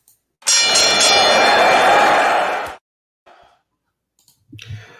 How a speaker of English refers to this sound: And let me ring the bell, and we'll get the show on the road.